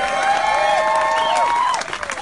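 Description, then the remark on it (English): An audience applauds in support of abolishing slavery in the state of Colorado, with dense clapping mixed with high rising and falling whoops and cheers, holding at a strong level before easing slightly at the end. “Just a round of applause if you want to abolish slavery in the state of Colorado.”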